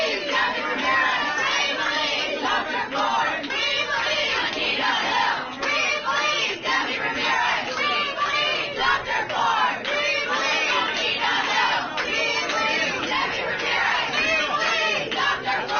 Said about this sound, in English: The attackers and shriekers are the nutty ones. That's why I'm a little bit optimistic about the election 42 days from now, because that kind of shrieking and screaming, that's been the only message the